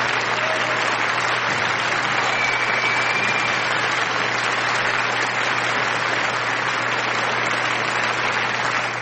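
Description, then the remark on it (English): Steady, loud applause from a sizable crowd, a dense wash of clapping that holds evenly for about nine seconds before cutting off abruptly, with a faint low hum underneath. “Let me give you your applause.”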